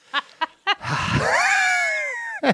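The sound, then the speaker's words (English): A dog lets out three quick, sharp yaps, then a long, rough growl that rises and slowly trails off, followed by one more short yap, all fairly loud. “Oh, dog, got it.”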